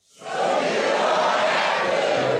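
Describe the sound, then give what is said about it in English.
The audience of the television show Huckabee bursts into loud cheering that swells within a fraction of a second and holds as a steady, dense roar of many voices for a couple of seconds, with no single voice standing out. “Wow, what a crowd.”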